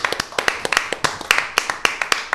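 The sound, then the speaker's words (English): Hands clapping in a quick, slightly uneven patter, sharp bright claps overlapping as if a few people join in, fairly loud and steady for a couple of seconds with no talking. “Clap, cuz.”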